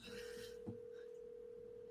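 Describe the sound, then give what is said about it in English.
A phone-a-friend call on the show Beard Oil Roulette rings out over a speakerphone: a steady, continuous electronic ring tone holds at a low, even volume, with faint room noise and a brief click partway through. “I'm putting my speakerphone too.”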